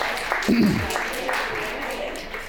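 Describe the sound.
An audience claps steadily, a dense crackling patter of many hands that holds at an even level throughout, with a brief voice rising above it early on.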